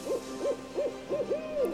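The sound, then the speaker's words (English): A barn owl calls in a quick series of four or five short, tonal hoots, the last one drawn out, clear against a quiet background with no talking. “Barn owls.”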